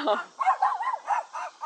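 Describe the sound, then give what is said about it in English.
A small dog lets out a quick string of high-pitched, yappy barks, about five short bursts in a row, fairly loud. “Person is stopping. For little barky dogs.”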